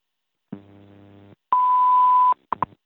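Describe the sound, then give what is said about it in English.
A WWV radio time signal: a low buzzy hum, then a loud, steady high-pitched beep held for nearly a second, followed by two quick faint clicks. No one speaks. “At the tone, 19 hours, 9 minutes, coordinated universal time.”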